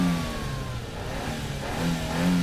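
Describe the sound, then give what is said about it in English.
A car engine starts and drones loudly and steadily, its pitch rising and falling slightly as it revs. No one speaks over the sound. “Okay, start the car”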